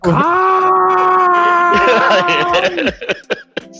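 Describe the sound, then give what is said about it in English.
A person lets out a loud, drawn-out mock scream held at a steady pitch for nearly three seconds, then it breaks into short choppy bursts like laughter. “Like, you're screaming.”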